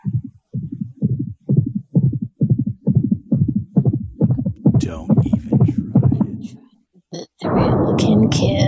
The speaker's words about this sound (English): They need to use a bigger thunder at the end, at least then. Yes. Like, do something that'll like scare the kids. Strike the fear into the, yeah, you want to feel that clap, that thunder clap in the loins.